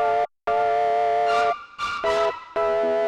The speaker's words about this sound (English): I think there's also, this is a cool Omnisphere patch that is run through clip distortion. I thought was really cool.